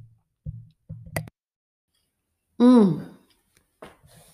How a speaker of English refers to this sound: Let me take a drink of my coffee. Hold on.